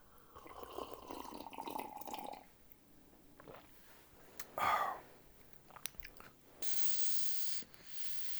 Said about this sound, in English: Moving on, as I slurp some of this.